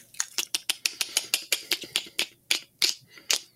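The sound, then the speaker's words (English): A voice imitates the Predator's mandible clicking from the film: a rapid series of about sixteen sharp, bright clicks in a fairly steady rhythm, slowing slightly toward the end, with no talking. “Can you do an impression of the clicking noise?”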